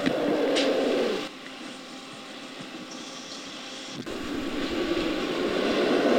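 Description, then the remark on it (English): A king cobra's low, breathy growl rumbles on steadily, easing off for a few seconds midway and then swelling back to full strength, with no voices. “So this guy Young was trying to figure out if there were any, like, snake-made sounds, and he honed in on the growl of the king cobra, which rumbles at a very low frequency.”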